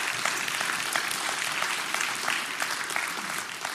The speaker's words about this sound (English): Can we clap?